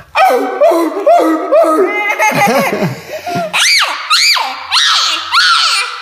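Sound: voice imitating a seal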